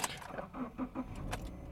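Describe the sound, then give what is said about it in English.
Car keys jingle and clink in a few quick metallic bursts, with a low rumble underneath as the car is started on a cold day of about 40 degrees. No one speaks. “Let me look as soon as we get this here car on.”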